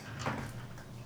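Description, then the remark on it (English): A door slams shut once: a single muffled thump followed by a short rumble that fades into a steady low hum. No voices. “I just slammed the door.”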